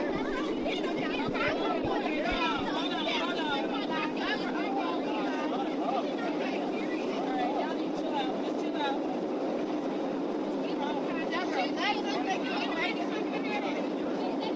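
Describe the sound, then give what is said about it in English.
Passengers, including girls going back and forth, yell and argue in a commotion aboard an airplane, recorded on a phone; several raised voices overlap continuously over a steady cabin engine drone, fairly loud throughout. “And all of a sudden, there's yelling and screaming and people raising their voice. And you know what? I pulled out my phone and I missed part of it, but I got the back end of it.”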